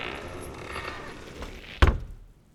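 A heavy olive wood door of a king's chamber swings with a low, grinding creak, then is shut with a single loud, deep thud that rings briefly before fading into quiet.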